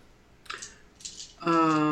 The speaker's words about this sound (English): So yeah, I'll just do all of them. So you're all rolling all of your d8s. Does any... I am not rolling all of my d8s. How many are you rolling? 3. Okay. Is that a d8?